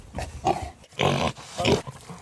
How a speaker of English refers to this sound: So we'll now go to Heroes and Villains. This is a Grunt the Pig Freedom Snort, which I believe is playing right now.